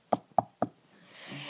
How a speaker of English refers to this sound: Okay, so just close your eyes and imagine you're at your house or your parents' house or someone's house, and they come and they knock on the door.